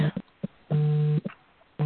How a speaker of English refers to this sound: Oh, something is buzzing on my phone. Well, somebody's got an alarm or something that's going off.